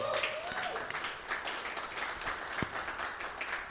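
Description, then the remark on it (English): A crowd applauds steadily to welcome a speaker, dense overlapping claps forming a continuous wash of sound at moderate volume, with a faint voice briefly audible near the start. “So if you give him a warm applause.”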